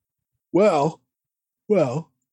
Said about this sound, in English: He's yawning. He's yawning on the show, yeah.